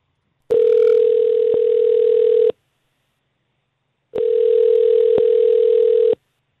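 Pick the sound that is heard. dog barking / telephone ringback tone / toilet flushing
telephone ringback tone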